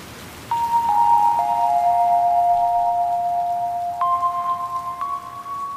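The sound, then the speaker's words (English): Steady rain hisses throughout in Los Angeles, a continuous wash of falling drops, while a few long, sustained musical tones rise and shift in pitch over it. No one speaks. “Well, it was raining in Los Angeles again.”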